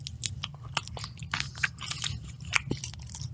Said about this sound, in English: If you're listening to the audio and not watching the video of this podcast, it sucks for you. I'll try not to chew in the mic. No, you got to chew in the mic.